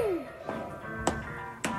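Feet stomp on the floor of a recording studio booth in three sharp, separate thumps spaced irregularly about half a second apart, over a faint hum of sustained tones with a brief gliding pitch at the start.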